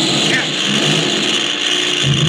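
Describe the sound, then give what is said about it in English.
A damaged aircraft engine, hit by enemy fire and burning, drones loudly and steadily, a rough, dense roar with a harsh buzzing edge that never lets up over the short stretch, filling the whole scene. “He hit our engine. It's on fire.”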